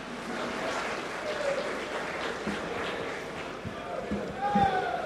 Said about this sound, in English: A round of applause as she joins us on stage to deliver a message from the organization that has been running the NSMQ for the last 25 years. Can we give a better round of applause for Primetime?